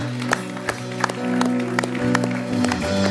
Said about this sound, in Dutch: Come on, why don't we give God a hand right now? Laten we God een applaus geven.